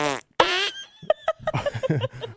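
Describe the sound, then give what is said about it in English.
Two short, squeaky fart sounds, apparently imitated with the mouth, each a tight buzzy burst under a second, followed by a run of rhythmic laughter. “Girls got, because their butts are so tight, they got a little.”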